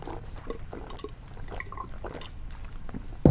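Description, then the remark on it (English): Someone chugs a drink from a glass, with quick wet gulps and liquid sloshing in a steady rhythm, ending with a sharp louder knock as the glass comes down. “We're going to chug? That's what we're going to do? We're just chug. We're chugging? Let's chug it.”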